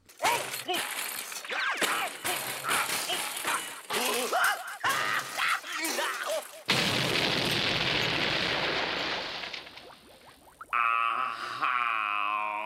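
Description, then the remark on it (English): Clattery cartoon sound effects as a bamboo bicycle, a jellyfish and a squid fall off a cliff lead into a sudden, loud, giant explosion that roars and slowly fades over a few seconds, followed by a warbling, wobbly tone at the end. “And then, of course, what happens when you take a bicycle made of bamboo and a jellyfish and a squid and they fall off a cliff? Of course, a giant explosion.”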